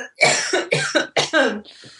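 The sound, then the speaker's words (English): A loud coughing fit: four harsh coughs in quick succession, ending in a softer wheezy breath or throat clear. “There's that cough attack I said that.”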